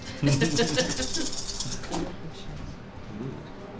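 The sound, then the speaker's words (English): A handful of dice clatter and rattle together in a busy burst of clicks that tapers off, with murmured voices underneath. “yeah, it's really exciting to have that many dice.”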